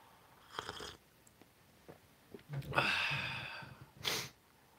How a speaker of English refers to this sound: There's a cat. Should make the cat do an episode sometime. You can't make a cat do anything.